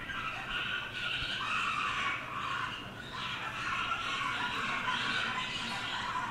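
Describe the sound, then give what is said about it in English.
A harsh, grating bird threat display call runs almost without pause, a dense, rasping chatter of overlapping squawks at steady loudness, with no talking over it. “I'll play a little bit of what is considered a display vocalization, which could be just a contact or possibly a threat, so they feel threatened to their nest.”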